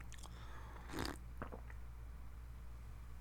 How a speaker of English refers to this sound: Take a sip of coffee here.